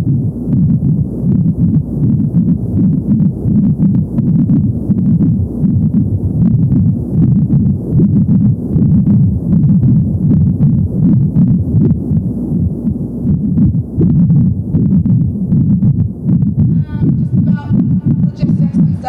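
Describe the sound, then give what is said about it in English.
A woman's heartbeat picked up by a fetal heart monitor: a loud, muffled, whooshing pulse repeating steadily and quickly over a constant low rumble, with no voices present. “I bought a fetal heart monitor and recorded her heartbeats.”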